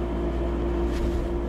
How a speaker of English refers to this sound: The fridge is now running for more than 15 seconds. What is this madness?